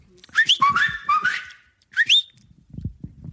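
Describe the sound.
A loud human whistle used as a call to someone: a warbling phrase of rising and falling notes, a brief pause, then one quick upward swoop, followed by faint low rustling.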